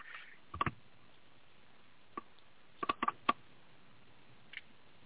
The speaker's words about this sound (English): Sounds like a typewriter.